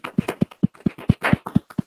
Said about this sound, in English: Can you clap for me, please?